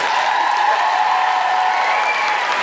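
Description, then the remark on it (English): An audience applauds steadily for Anna Veglio-White, a dense wash of clapping hands at an even, fairly loud level throughout, with no voices speaking over it. “A big round of applause for Anna Veglio-White.”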